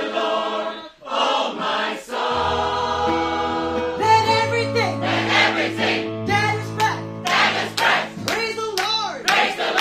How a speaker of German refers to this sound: Und bei … könnt ihr auf die Viertel klatschen. Ne?